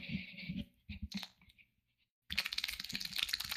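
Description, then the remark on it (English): Wet, squelchy clicking made by a person with their cheek: a few sputtering bursts, a brief silence, then a dense, rapid run of slippery crackles like wet cards being shuffled. “It sounds like someone's shuffling cards that are wet.”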